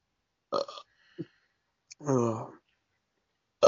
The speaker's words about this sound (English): Damn it. Now you're the one belching. Look, now that I'm done eating my Hardee's and it's finally settling, it's catching back up to me.